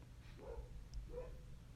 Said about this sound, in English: You hear that dog in the background? Is it? Yeah. Whose dog is that?